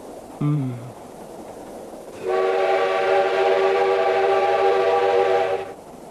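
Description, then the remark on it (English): A train whistle blows as the train enters a tunnel: one long, steady, piercing note for several seconds, loud, after a brief lower honk near the start. No one speaks. “After what seemed an eternity of silence between us, the train entered a tunnel.”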